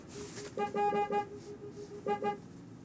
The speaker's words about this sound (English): Wow, you're being honked at, bro. Hey, bro, that's a green light.